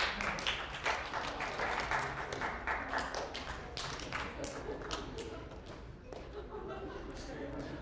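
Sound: audience clapping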